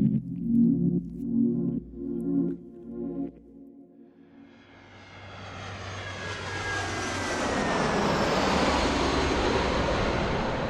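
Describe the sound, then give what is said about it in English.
A steady engine roar of an airplane bound for Thailand swells up after a few seconds of low rhythmic music, building into a loud, broad whine with rising tones that holds to the end. “So before Jakob can meet with the buyers, Amaryllis gets on a plane for Thailand to intercept him.”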